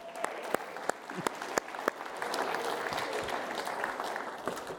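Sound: audience clapping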